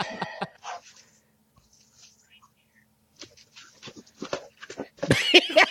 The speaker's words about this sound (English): These badass dogs. Ooh, shit. Run. Hey, you better get the fuck. Bro, them pit bulls, bro. Get the fuck out of here, bro.